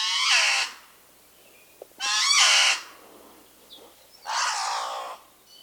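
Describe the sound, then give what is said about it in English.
Three loud, drawn-out calls of a Hawaiian crow (alala) with a wailing, begging quality, each about half a second to a second long and separated by short pauses, clear with no talking. “They, especially the young birds, they have kind of this crying, begging kind of sound, like an overtired toddler sound.”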